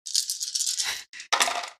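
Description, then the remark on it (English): Dice are rolled for a strength check, clattering and tumbling across a hard tabletop in a quick rattling burst, pausing briefly, then skittering again before settling, fairly loud with no talking. “Make a hang on roll. Straight up strength, except take minus two dice because you only have one arm.”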